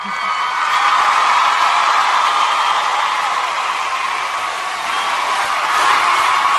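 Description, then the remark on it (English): A large crowd applauds and cheers steadily for several seconds as a tribute to moms on the show Channel Mom, a loud, dense wash of clapping with scattered whoops that holds at an even level throughout. “Here it is, our mom applause.”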